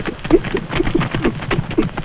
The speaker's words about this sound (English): And I think that really came out in that scene that you mentioned at the end where Jarvis comes riding up on the horse and says, how dare you think about leaving, how could you do that?